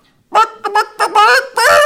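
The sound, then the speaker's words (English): Several women's voices cluck a song like chickens instead of singing it, in a melodic way. There are five loud bursts with short pauses between them, the last one long and drawn out. “because her and a bunch of women done this song, but they didn't any of them sing. They clucked it.”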